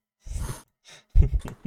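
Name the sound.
voice imitating heavy breathing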